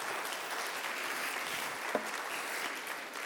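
Steady applause from an audience for a returning conductor, a dense wash of many hands clapping at an even, moderate level throughout, with one slightly sharper clap standing out briefly.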